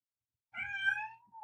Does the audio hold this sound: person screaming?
no